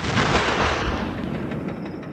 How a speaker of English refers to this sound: Yeager pulls out a handgun inside and he goes to shoot the television that Kennedy was just on. And he fires the shot. And at the same time as you see the TV explode, we cut outside and just see a fireball on the horizon.